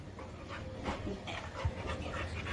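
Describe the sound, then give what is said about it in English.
A puppy pants in quick, steady breaths, a soft rhythmic huffing that continues throughout with no one speaking. “What if I saw that puppy? I would have to pet it.”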